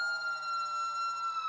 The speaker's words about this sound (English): The steps lead downward into darkness. You hear a scream echo from below.